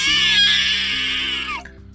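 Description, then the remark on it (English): A harpy, landed on a branch at the edge of a wood, lets out one loud, piercing shriek that holds shrill and raspy for about a second and a half, then breaks off abruptly, leaving a low hum underneath. “The harpy landed on a branch at the edge of the wood and shrieked at her.”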